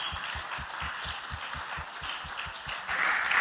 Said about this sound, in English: Would all the members, please, from Army, Navy, Air Force, Marine, would you all stand so that we can give you one last applause, please?